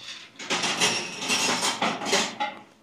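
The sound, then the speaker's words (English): Silverware clinks and clatters in a kitchen, a steady run of bright metallic knocks and scrapes lasting a few seconds with no voices. “Silverware in the background.”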